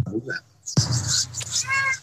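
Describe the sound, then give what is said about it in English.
A cat meows once, a short, high, wavering cry near the end, rising above a steady background hiss and murmuring voices. “I hear the kitty.”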